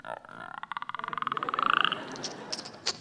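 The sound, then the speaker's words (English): A badger frog sitting on a stump at a camp croaks in a single rapid, buzzing trill that builds in loudness and rises slightly in pitch over about a second and a half, then trails off into a few faint chirps. “The badger frog just eyes him.”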